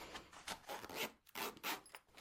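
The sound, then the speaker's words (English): A pencil case being zipped shut, a quick series of raspy zipper pulls in short bursts with brief pauses between them, no voices present. “And we'll just do that one up again so I don't lose any of them.”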